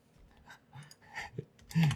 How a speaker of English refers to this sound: You're angry typing.